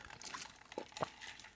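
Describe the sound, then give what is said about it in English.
A plastic water bottle crinkles and crackles in a quick burst of brittle, uneven snaps, with a couple of sharper pops as someone drinks; fairly quiet and brief, with no talking. “Sorry, some water.”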